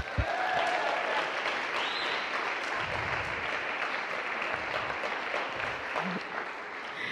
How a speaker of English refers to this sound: And we have the most incredible kids team, probably the best kids team in the world, that help out every single Sunday. So can we just take a moment to give them a round of applause?